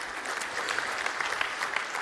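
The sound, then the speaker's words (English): An audience claps for the worship team, a dense, steady wash of many hands applauding together with no voices rising above it. “I asked them, we can give them a clap.”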